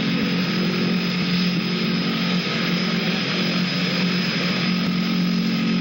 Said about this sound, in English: There's the other plane.